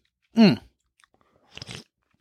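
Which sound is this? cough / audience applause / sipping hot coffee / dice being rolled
sipping hot coffee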